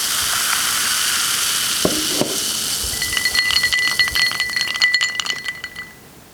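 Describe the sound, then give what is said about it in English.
A nanny's landline house phone rings in her home with a rapid, high-pitched electronic trill lasting about three seconds over a steady background hiss, preceded by a couple of brief clinks. “My nanny's house phone is a sound that I have heard a lot in her home, even more now since living with her.”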